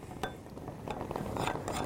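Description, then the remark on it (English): A spoon stirs 1/4 cup of water with 1 tablespoon of flour in a cup, to be added to a stew, giving repeated light clinks and scrapes against the sides in a quick, uneven rhythm, with no talking. “This is 1/4 cup of water with 1 tablespoon of flour.”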